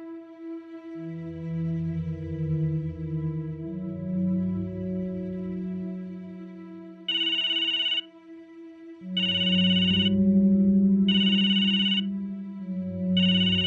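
A mobile phone rings with a melodic ringtone, fairly loud, then breaks into repeated bright, high-pitched trilling bursts in a steady on-off rhythm. No one speaks.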